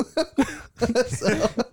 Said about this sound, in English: You made him cough. You're on thin ice. You're a danger to his health.